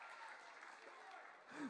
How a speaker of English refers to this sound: Wrong place to clap. We'll work on it.